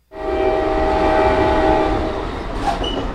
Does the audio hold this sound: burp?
no